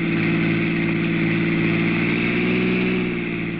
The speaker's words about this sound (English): Your car roars past Mary's car within a few miles, and you leave her behind.